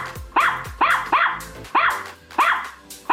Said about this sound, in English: Now, I'm not sure, but it sure sounds to me like the dog is yelling, "Help, help, help," to the guy on the phone. Give another quick listen and see what you think. You hearing what I'm hearing? because I'm hearing help. I'm stuck in this dang turkey,